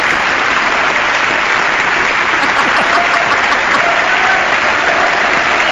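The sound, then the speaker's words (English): A large audience gives a standing ovation at the State of the Union address, a dense, sustained wash of clapping that stays loud and even for several seconds without pausing. “Should we clap too?”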